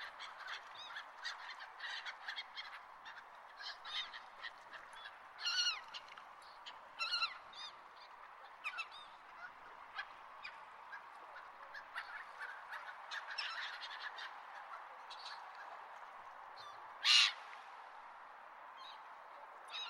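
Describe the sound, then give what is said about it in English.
Herring gulls call repeatedly in a busy chorus, with sharp, bright cries overlapping and one louder squawk standing out near the end. “Heron gull. As common as white bulky clouds, they eat almost anything with their sharp yellow bills with red spot like blood.”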